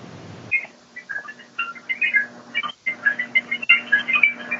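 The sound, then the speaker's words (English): Old light bulbs in a back box, never replaced with LEDs, give off a delicate twinkling: a scatter of tiny high-pitched pings and tinkles in irregular bursts, faintly reminiscent of rain or wind chimes, over a steady low hum. No one speaks. “And it actually was making a twinkling sound that I recorded, so I'm going to try to play it right now, and we'll see if you can hear it.”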